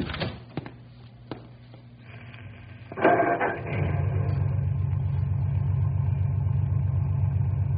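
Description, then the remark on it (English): A few sharp clicks, then a car engine cranks and catches with a brief roar before settling into a steady, rumbling idle that continues to the end. No one speaks. “Go ahead and start the car.”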